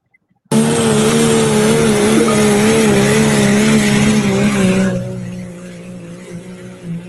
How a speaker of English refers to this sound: I'm going to bring up that video of that diesel truck here that you guys were telling me about. That's on the Facebook page right now. Yep, that one there.